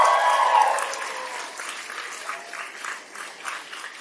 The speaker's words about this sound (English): Big round of applause, ladies and gentlemen.